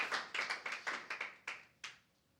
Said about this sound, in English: My God, you want to clap hands for Jesus? Go ahead and do it. Why are you? Why are you hesitant? Alkışlayacaksanız alkışlayın.